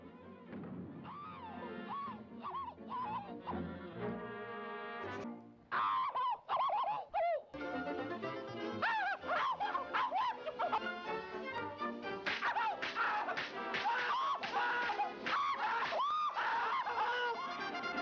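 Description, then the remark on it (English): A rapid compilation of loud, shrill cartoon cat screams, one after another with varying pitch and length, sometimes overlapping, continuous with no talking. “there is this one that's a compilation of different screams, and I'll play that just for a minute here.”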